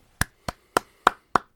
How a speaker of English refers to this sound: you're kind of being slightly, I don't know, rude with your clapping. Like, you don't clap for everybody else. Is this kind of like a taunting thing?